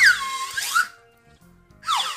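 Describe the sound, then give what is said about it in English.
A cheap slide whistle toots in two loud bursts, its breathy pitch swooping downward and wobbling, with a short quiet gap between them and no talking. “No, it's a cheap, shitty slide whistle.”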